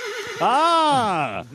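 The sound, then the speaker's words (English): A horse lets out one loud whinny lasting about a second, its pitch arching up and then sliding back down, preceded by a brief lower rumble. “My steed has reminded me that I have received correspondence.”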